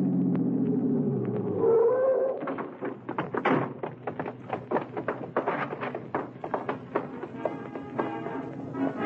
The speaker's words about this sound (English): It was maybe 1:25 when I hit the alley leading to the stage door of the Dodge Theater and twisted the car into it.